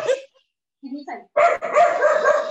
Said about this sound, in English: Sorry. It's fine. Don't worry. That's a crazy dog. It's absolutely fine.